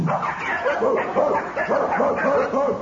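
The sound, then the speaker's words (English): Several dogs in a building bark and yip continuously in a loud, overlapping chorus, with some whimpering mixed in, without pause. “How are you going to make all these dogs keep quiet?”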